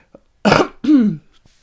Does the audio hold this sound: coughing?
yes